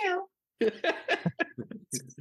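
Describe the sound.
A short meow with a falling pitch from an agitated cat, then after a brief pause a quick run of chattering, voice-like vocal sounds.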